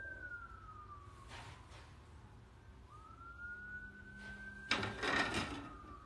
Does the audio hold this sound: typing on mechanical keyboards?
no